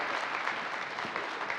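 An audience applauds steadily, a dense wash of many hands clapping at once with no pauses, fairly loud and sustained throughout the short stretch.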